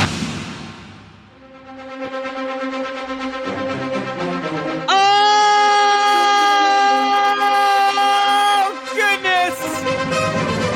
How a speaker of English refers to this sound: Breaking news siren.